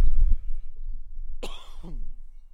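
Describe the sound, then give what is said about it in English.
A single throaty cough bursts out after a moment of low, rumbling wind noise, its rough onset trailing into a short voiced tail before the breeze settles again. “Wait for the breeze to die down for a bit, maybe cough again.”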